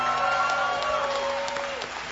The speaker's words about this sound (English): Let's give these guys a round of applause who have come forward.